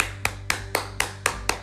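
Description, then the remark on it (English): Six crisp hand claps in a quick, perfectly even rhythm, fairly loud, with a low steady hum underneath and no one talking. “let's applaud Prince Harry for standing up for his wife and for his family”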